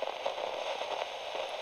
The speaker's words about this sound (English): He turns it back on and shakes it a little. It gets a familiar sound of static in response.